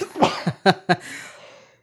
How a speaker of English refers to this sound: I'm going to sneeze.